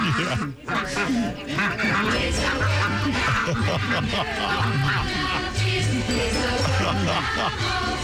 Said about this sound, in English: Yeah. Oh, here come the geese.